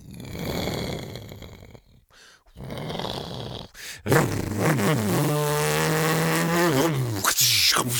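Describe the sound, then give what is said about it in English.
A person's voice imitates a motorboat engine: a rough, sputtering buzz, a brief pause, then a loud, sustained droning hum whose pitch wavers up and down. “I'm pretty sure they didn't have boats with motors back then.”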